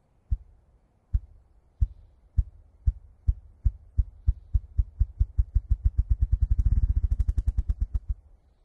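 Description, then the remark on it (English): A bird drumming on a log, snapping its wings back to catch a pocket of air between its shoulder blades: deep, muffled thumps begin slow and widely spaced, then speed up steadily into a rapid, blurred drum roll before cutting off. No voices. “snaps its wings back and catches a little pocket of air in between its shoulder blades. This actually makes a very low thud, and it will do it in rapid succession.”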